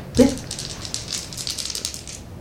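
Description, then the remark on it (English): Dice rattle and clatter for a couple of seconds as they are rolled for a downtime action in a game, a bright initial knock followed by a continuous rapid rolling patter of hard little taps, moderately loud with no talking. “Do you want me to roll?”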